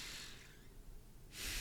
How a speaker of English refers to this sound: This is like not even Zen shit. This is like the Navy SEAL box breath, which I guess is like they say is like four in, four back down, and then when you're pausing, four. So it's like. So yeah, box breath.